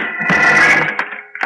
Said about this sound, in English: I mixed myself a tall one, and I was just getting to the bottom of it when a couple of guys kicked my door open.